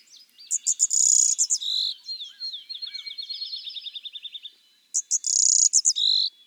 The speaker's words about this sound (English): is seen in a couple of cheery little songbirds from North America, the blue-winged warbler and the golden-winged warbler. These two species are the same size and shape, but their colors are dramatically different and they sing different songs.